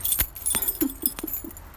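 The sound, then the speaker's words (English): Metal keys jingle and clink in a loose, irregular series of bright, sharp taps, with a few soft low thuds mixed in, as someone fumbles through a key ring for the door key in the dark by the light of a phone. “I'm looking at the key, looking for the key with the light of my phone.”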